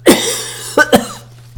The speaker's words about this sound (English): Please excuse me, my sneezes have recently, today, been replaced by coughs. And no one's blessing me now. Coughs don't get blessed, only sneezes.